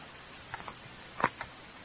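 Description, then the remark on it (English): A clock ticks softly, a handful of light, dry clicks spaced a little unevenly, with one slightly louder tick near the middle and no voices. “I might sit here all that time listening to you ticking. Ticking away the years.”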